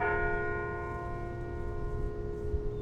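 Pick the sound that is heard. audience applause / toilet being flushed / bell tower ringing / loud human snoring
bell tower ringing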